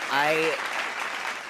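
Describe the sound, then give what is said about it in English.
A brief patter of hand clapping celebrating a successful solo show, with a short voiced exclamation over its opening moment, then the clapping stops abruptly. “That clap got cut off, but I don't care because I'm so happy how the show turned out.”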